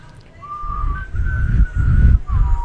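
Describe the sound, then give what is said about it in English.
A person whistles a short four-note tune, clear sustained tones that step up and then drop at the end, with breathy low rumble underneath. “Yeah, I was like this. With the little whistle.”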